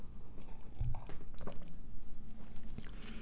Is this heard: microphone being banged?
no